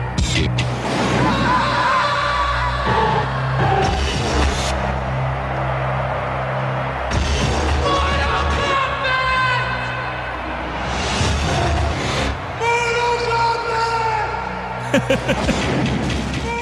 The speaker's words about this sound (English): It's just people in the streets yelling Mortal Kombat with cuts to the game in between.